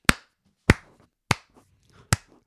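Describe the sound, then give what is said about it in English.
Four sharp, sharp-edged claps land one at a time at a slow, steady pace, roughly half a second apart, with faint quiet in between and no talking. “What is that? That slow clap? Slow clap.”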